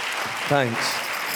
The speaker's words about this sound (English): And let's just give everyone a big round of applause.